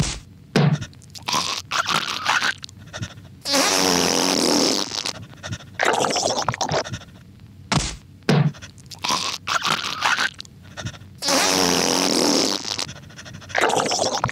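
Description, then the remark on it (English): Cartoonish fart noises come within a repeating sequence of thumps from someone punching himself, stomps on the ground and harsh, crunchy throat-hacking sounds. The whole loud pattern plays twice, with no talking. “Then he punches himself, stomps the ground, hacks up, and then he farts.”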